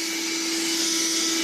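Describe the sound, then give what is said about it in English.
A vacuum cleaner drones steadily, a constant motor whine with a strong tonal hum and broad airy hiss, running without pause and with no voices. “You've got to be very brave when I've got the vacuum cleaner out.”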